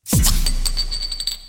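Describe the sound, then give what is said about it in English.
Glasses clink together in a toast: one sharp, bright strike, then a high ringing tone that slowly fades over about a second, with a few faint extra taps along the way. “Cheers. Cheers. Cheers.”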